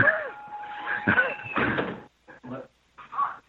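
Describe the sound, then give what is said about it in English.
A door clatters open with a couple of sharp knocks and a rattling creak, followed by a few soft thumps and shuffling sounds as the speaker's child comes in through the door. “Matter of fact, my offspring is just coming in the door right now.”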